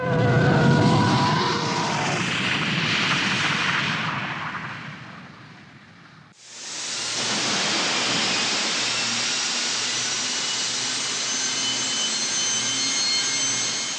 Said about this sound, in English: The TIE engine sound.